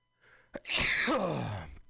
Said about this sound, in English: I have to sneeze.